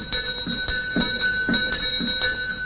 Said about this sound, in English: She walks over a small bridge toward the old manor laced with overgrown foliage. Ascending steps to a front door, she sets down her cases and holds a bell pull.